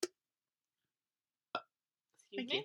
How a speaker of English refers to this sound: Excuse me? Thank you, that is much better. We do be a burping on this podcast.